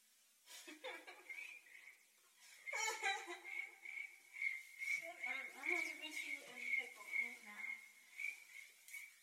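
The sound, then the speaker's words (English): A voice imitates crickets chirping with the mouth: a steady stream of rapid, high-pitched trilling pulses, with some laughing and vocal sounds mixed in across the nine seconds. “I just made that sound in my mouth, folks, because the crickets were the only ones laughing at that joke.”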